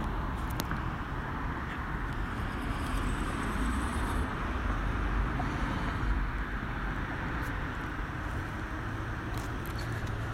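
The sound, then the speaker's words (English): A bus approaches on the road, a steady low engine drone with traffic and wind noise holding fairly loud and even throughout. “Is that the bus? Do you see it?”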